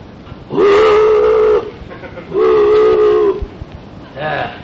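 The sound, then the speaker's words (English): A mournful boat whistle sounds through dense fog in two long, steady blasts, then begins a third, loud over a low background rumble. “Somewhere out in that pea soup, a mournful boat whistle sounded.”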